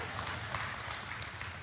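An audience in Texas claps together in a steady, dense patter of many hands at an even loudness for a brief moment, with no one speaking.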